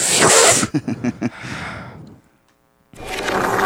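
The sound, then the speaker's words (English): A voice imitates a fart slurped through a straw: a loud hissing blast, a quick run of wet sputtering pulses that trails off, a short silence, then another breathy rush. “In fact, that might be what a fart sounds like going through a straw into my mouth.”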